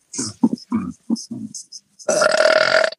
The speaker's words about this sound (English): And I was burping before this.